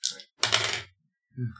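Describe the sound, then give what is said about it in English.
Two dice tumble across a hard surface in a game roll, a sharp rattle followed by a longer rolling clatter, then a brief final knock, fairly loud with no talking. “God damn it, both dice. Let's go.”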